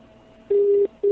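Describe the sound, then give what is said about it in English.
A phone line's ringing tone as a call connects: a steady, fairly loud electronic hum pulsing in two short bursts over a faint background hiss, the second burst starting just after the first stops. “That sounds like maybe something. I think that might be ringing.”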